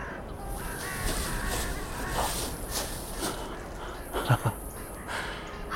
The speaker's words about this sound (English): Carrion crow. The jackals. The maggots.